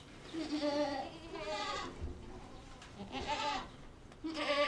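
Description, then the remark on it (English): Several goats, kept and milked in a large barn at the University of Wyoming Stock Farm, bleat in a loose overlapping chorus, each call a wavering, nasal cry of about a second, fairly loud over a steady barn background hum. “And that's where the goats come in.”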